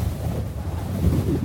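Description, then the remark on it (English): Steady, gusty wind roars for a moment, pulling at roofs in Arizona, a dense low rumble with airy hiss on top that swells slightly toward the end. No voices, just the wind blowing fairly loud. “The wind pulls at them.”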